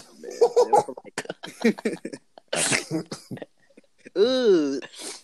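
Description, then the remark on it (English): A loud, harsh snort, someone sniffing hard to pull up mucus, cuts in once amid casual talking, followed by a drawn-out vocal groan. “He's out here sniffing and eating their mucus.”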